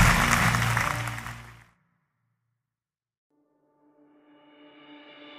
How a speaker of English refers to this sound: Come on, let's fill the place with praise today. Clap your hands, fill this place with praise.